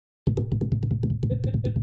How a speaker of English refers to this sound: Sounds like the cops knocking on my door.